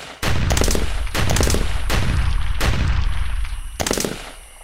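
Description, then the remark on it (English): Loud gunfire at night aimed at two raccoons by a dumpster, in irregular rapid volleys, several sharp cracking shots clustered together with a heavy booming rumble carrying between them, then one last burst before it tails off. No voices. “Y'all freeze or I'll shoot.”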